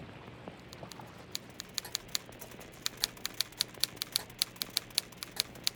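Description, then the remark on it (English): Keys clack in a quick, uneven rhythm as Officer Dent Newton types a report in his office under a spinning ceiling fan, sparse at first and then settling into a steady run of sharp taps at a moderate level over a faint hum. “With the ceiling fan spinning overhead, Officer Dent Newton was typing a report when the young couple burst into his office.”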